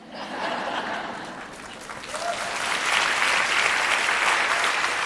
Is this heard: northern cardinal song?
no